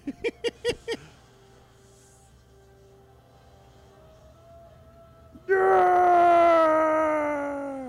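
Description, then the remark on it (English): In a film scene, a man lets out a loud, drawn-out scream that slowly falls in pitch, following a brief run of short rhythmic bursts and a quiet pause. “I just imagine them filming that over and over again, the guy having to scream the whole time.”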